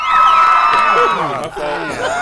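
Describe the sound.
A loud crowd cheers and shouts all at once, many overlapping voices whooping and hollering in a dense, sustained roar that holds steady for a couple of seconds.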